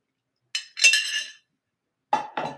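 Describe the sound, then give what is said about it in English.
A glass of water clinks twice with bright, ringing high tones as someone takes a sip, then after a short pause comes two duller knocks, like the glass being set down and touched again. No one speaks. “But let me have a sip of water before we do.”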